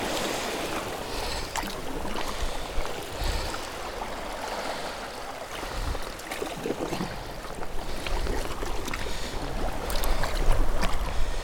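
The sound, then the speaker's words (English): A kayak paddle dips and pulls through water as the kayak moves away from the shore, a steady series of soft splashes, with a constant broad wash of moving water and a light wind hiss underneath, and no voices. “And paddling away from the shore now, that's lovely.”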